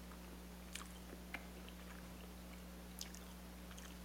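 Chewing of a Brain Blaster Sour Breaker sour hard candy, with a few sharp crunches spaced irregularly and soft mouth sounds between them over a steady low hum; no one speaks.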